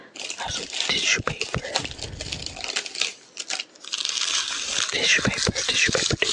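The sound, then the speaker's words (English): Dense, bright crinkling of cellophane, a continuous crackly rustle with sharp snapping bursts that rises and falls in loudness over several seconds, with whispery breathy sounds mixed in. “So, this is the cellophane. I'm gonna, like, kind of crinkle it in the background a little bit.”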